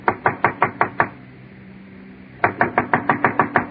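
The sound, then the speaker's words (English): A quick burst of about six firm knocks on a door, a short pause, then another rapid run of eight or so knocks, loud with nobody speaking. “why don't you answer the door?”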